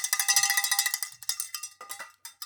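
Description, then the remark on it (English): A bright metallic bell is rung rapidly and repeatedly, a steady clanging rhythm of sharp strikes with ringing overtones, fairly loud with no voices over it. “Do you have the bell?”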